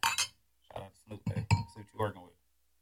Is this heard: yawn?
no